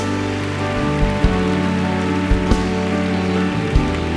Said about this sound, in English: If you believe God heard your prayers, give Him a big clap right now.